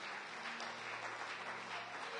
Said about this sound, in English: Let's give the Lord a big hand clap.